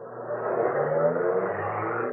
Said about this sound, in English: The woman slipped out of the car, fled. The man got in, drove off.